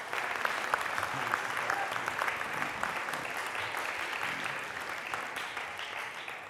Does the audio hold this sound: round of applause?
yes